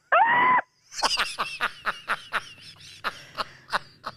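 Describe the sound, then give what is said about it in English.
A man lets out a brief, high-pitched scream, then breaks into a rapid, rhythmic run of breathy laughter bursts, fairly loud. “Why did he scream at the end?”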